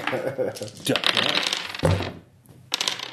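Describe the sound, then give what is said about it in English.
Dice clatter and tumble across a hard tabletop in a quick, rattling burst, with a few scattered clicks afterward and people talking faintly in the background. “So go and give me a roll. Hold on. Easy. Roll the dice.”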